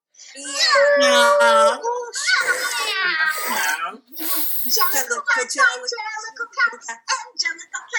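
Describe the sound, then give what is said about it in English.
Several voices on a train imitate cats, drawing out loud, wavering, high-pitched meows for a few seconds, then a short hissing burst and some quieter overlapping vocal sounds. “come on everyone, let's meow.”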